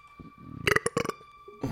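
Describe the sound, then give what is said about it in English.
A few short, croaky throat gurgles of escaping air, fairly loud, like gassy burps rising after a drink, with faint background hum and no talking. “you take a drink and then weird sounds and air just like, you're not burping, but it just finds its way up through your throat”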